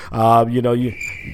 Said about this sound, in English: The crickets are out in the Bay Area, man.